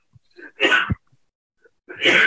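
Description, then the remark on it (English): Two loud, explosive coughs, each preceded by a short sharp intake of breath, with a brief pause between them and no talking. “The coughs are coming large.”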